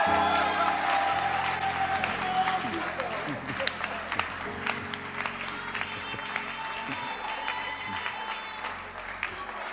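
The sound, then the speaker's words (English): A church audience applauds for Jesus with dense, sustained clapping, a few sharper claps standing out, while crowd voices murmur underneath throughout. “Applaudissez pour Jésus.”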